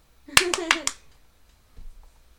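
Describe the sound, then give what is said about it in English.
Four sharp, loud hand claps in a quick, evenly spaced rhythm, clapping along to the theme of the TV show Friends, with a voice sounding underneath, then near silence apart from a faint soft noise. “You can't not clap to the Friends theme.”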